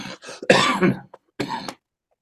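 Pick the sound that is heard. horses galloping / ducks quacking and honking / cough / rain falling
cough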